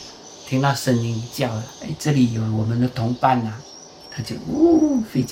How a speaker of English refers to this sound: These bird cries that fill the air are coming from speakers. Swiftlets cannot be held captive, so the recorded sounds reverberate through the building, like an invisible population of birds, calling for the real swiftlets to come.